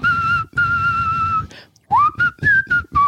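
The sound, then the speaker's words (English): A person whistles a short tune, starting with long sustained notes and then moving into a quicker run of shorter, sliding pitches with brief pauses between phrases. “Now, if you whistle those songs, it makes your husband crazy.”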